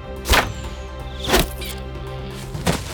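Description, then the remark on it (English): Three sharp arrow shots from a bow, each a quick whooshing thwack spaced about a second apart, fairly loud over a steady low background hum. “With a satisfied smirk, Hoderi let the arrow fly.”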